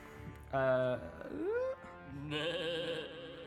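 A voice imitates a goat's bleat in a few wavering, nasal bursts, first short and strong, then a rising whine and a longer quavering bleat, fairly loud.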